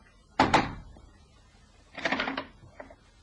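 A man knocks twice on the door of a house off Hanover Square: two quick, sharp knocks in close succession, followed a moment later by a longer creak or rattle as the door seems to open, then a faint bump.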